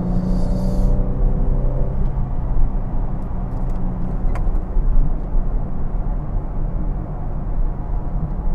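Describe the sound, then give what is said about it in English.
A car engine revs hard through a corner in second gear, loud, with a strained tonal whine early on that settles into a continuous heavy rumble. “Yeah, you know, I haven't driven this car properly like that for a long time. It feels good to get out, put some corners into it, testing out those new struts.”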